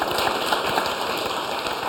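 A dense, steady round of applause from many hands, the rapid overlapping claps forming an even crackling wash that holds at the same level throughout, with no voices over it.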